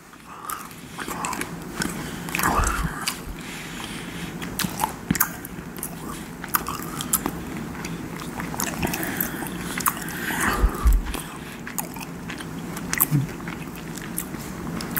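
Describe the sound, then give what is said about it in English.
Wet chewing of a snack treat, with repeated crunchy bites and squishy mouth sounds in an irregular rhythm, continuing steadily for about fifteen seconds with no talking. “I'm going to have another little treat, so it's probably going to take me about 10 seconds to chew this.”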